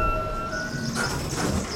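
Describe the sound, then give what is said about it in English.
A blue express train rolls past on the rails, a steady rumble with a thin metallic whine riding on top, continuous throughout with no voices. “Blue Express Train.”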